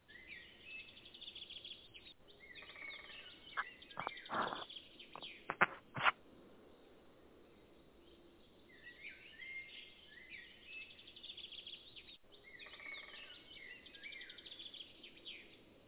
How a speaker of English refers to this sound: I was going to say, somebody got woodpeckers going on over there.